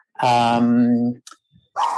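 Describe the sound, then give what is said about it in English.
A dog barks, one long, loud, drawn-out bark lasting about a second, followed by a couple of brief softer noises and a short burst of sound. “it's my dog barking, sorry.”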